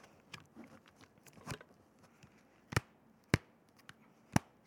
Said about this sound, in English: That's the page turning.